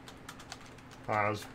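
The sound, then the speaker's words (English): Quiet, rapid computer keyboard clicks tap away, then a short voiced sound, like a brief murmur, briefly rises over the typing near the end. “You caught me typing.”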